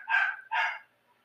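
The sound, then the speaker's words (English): A dog in the background at a family home gives two quick barks in a row, mid-pitched and fairly loud, with a short gap between them and nothing else audible. “There's actually a dog in the background.”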